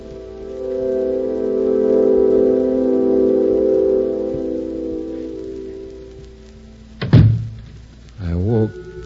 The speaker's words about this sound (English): The sound of the door closing.